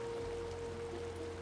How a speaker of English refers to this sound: Off in the distance, the sound of running water. Kalila would recognize this as the sounds of a waterfall.